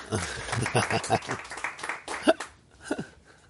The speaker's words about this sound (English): everybody's clapping. I want everybody to realize you're clapping for your wives, not for yourself, right?